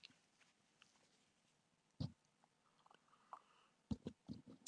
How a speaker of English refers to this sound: I need to have a sip of my Red Bull. Hold on for a second.